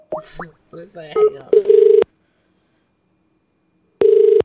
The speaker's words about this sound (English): Okay. Here we go. Ringing them up.